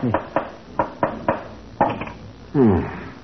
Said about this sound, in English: But what were you doing with the hammer and nails? What do you mean, what was I doing? All artists do that when they finish painting the canvas. Tacking it onto a wooden frame